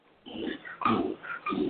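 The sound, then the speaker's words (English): A female pet dog snorts forcefully through her nose three times in quick succession, each burst a rough, breathy, pig-like snuffle, with no voices present. “My dog's having a moment here. She can't. She got a fire up her nose or something.”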